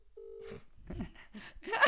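A steady electronic phone tone sounds briefly over a speakerphone as a call is placed to a mother, returning her call, followed by muffled, crackly line noise and faint voice-like sounds building in loudness.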